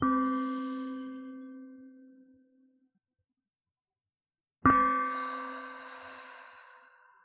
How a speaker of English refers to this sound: The beautiful part of a breath gong is that there's no timing involved. You let this length of the sound guide you. So you breathe in and you just keep breathing in until sound stops. And once sound stops, you tap it again and you exhale until sound